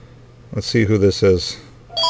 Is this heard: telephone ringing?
yes